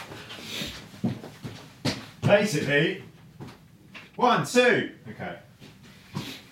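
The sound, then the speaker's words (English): A chair is shuffled and dragged out of the way at the back of a room: a series of knocks and bumps, then two squeaky, grinding scrapes across the floor, with faint voices in the background. “I mean, oh, the chair's in the way, hang on.”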